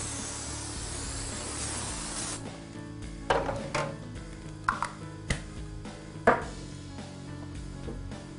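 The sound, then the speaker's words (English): A steady hiss of non-stick carnauba cooking spray being sprayed onto a baking sheet, lasting a couple of seconds, followed by scattered clanks and taps of the metal baking sheet being handled. “Now, as you roll that, and then we'll put this on a baking sheet, we have some non-stick spray. Carnauba cooking spray. All right, so we'll spray this down.”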